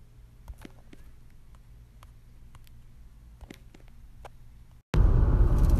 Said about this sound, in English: the hissing noise you hear in the background and the little tick, that's rain on the windshield